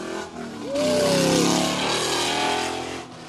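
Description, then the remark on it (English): A loud, throaty American muscle car engine revs hard, its pitch climbing in one sharp burst before settling into a steady, rumbling roar. No one speaks. “You are pure not allowed American to have a American muscle car like right that.”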